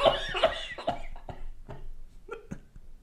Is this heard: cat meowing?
no